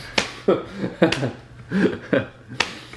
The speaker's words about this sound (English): I'm slapping my knee for anyone who doesn't know what that sound is.